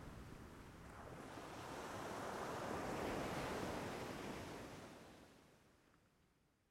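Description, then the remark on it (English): Sea waves rumble and hiss about 20 feet below a cliff edge, a broad wash of surf that swells to a peak midway and then recedes, heard alone with no voices. “It lay 20 feet below me, rumbling and hissing.”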